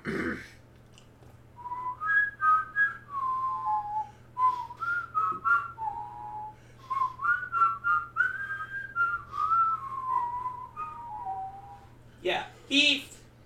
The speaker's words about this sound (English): I find it hilarious how we both whistled.